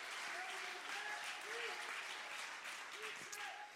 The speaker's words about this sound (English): Clap your hands if you believe what I'm preaching to you.